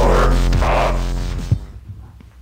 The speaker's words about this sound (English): Yeah. I heard you mowed your yard. I did. I just mowed it this evening. Yeah. Huh. I did mow. Thought I heard a mower.